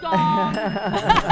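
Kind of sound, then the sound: signal or alarm, bell ringing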